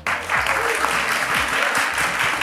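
An audience breaks into a full round of applause for the evening's guests, a dense, steady wash of many hands clapping at an even loudness throughout, with no voices standing out.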